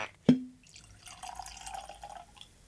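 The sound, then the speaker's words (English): A sharp clink of glass, then a short steady pour of 90-proof whiskey from Tennessee Distilling of Columbia into a glass, its gurgling tone rising slightly as it fills. Fairly quiet, with no talking. “So I'm excited to try this now that I know for sure that it's not Dickel. Let's go and get that poured.”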